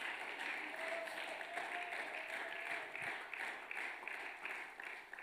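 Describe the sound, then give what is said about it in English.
A church audience at an evening service claps together in a steady, dense wash of applause, loud and sustained for several seconds, answering a call to clap hands and shout hallelujah, with faint voices mixed in underneath. “Can you clap your hands and can somebody shout hallelujah?”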